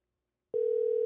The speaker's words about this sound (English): So we're going to give him a call. Hopefully he answers, you know? If he doesn't answer, then we're going to have to fucking make up our own fantasy story. It's ringing.